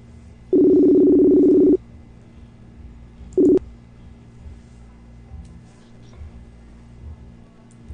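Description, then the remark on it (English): A steady electronic ringback tone of an outgoing video call buzzes once for just over a second, then returns as a brief clipped blip about two seconds later, fairly loud against an otherwise quiet, faintly humming background. “We're ringing.”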